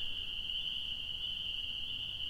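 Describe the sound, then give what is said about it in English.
A dense chorus of male spring peeper frogs calling to females forms a steady, shrill, high-pitched ringing that never lets up, heard alone over a faint low rumble at night under the moon, with no talking. “And listen to those frogs. So if you're just tuning in and you're wondering what this sound is, these are the spring peepers.”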